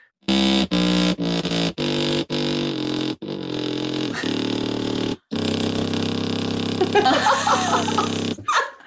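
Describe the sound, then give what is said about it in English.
A rackett plays a burst of buzzy, reedy low notes, starting near the top of its range and going down to the bottom: several short detached tones first, then longer sustained ones that step downward into a deep, rasping register, fairly loud throughout. “I'll give you a little burst of racketing. I'll start near the top and we'll see if we can go down to the bottom.”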